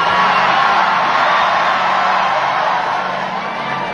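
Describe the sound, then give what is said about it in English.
A large crowd at a concert at the Enmore Theatre in Sydney roars with cheers and scattered whoops as Prime Minister Anthony Albanese sculls a beer. It is a dense, loud wall of voices that holds steady throughout and eases only slightly near the end. “Anthony Albanese has channeled Bob Hawke at the Enmore Theatre in Sydney overnight, sculling a beer to the cheers of the crowd.”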